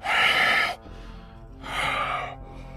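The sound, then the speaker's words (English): A voice imitates faint heavy breathing coming from deeper in a house, with two long, breathy exhales separated by a short pause, fairly loud, with no words spoken. “His heavy breathing.”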